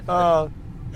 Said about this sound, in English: well, there goes the fire truck in Maroon. Well, I mean, this is a hopping little town, you know.